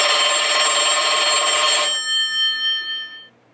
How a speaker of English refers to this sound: Did that phone just...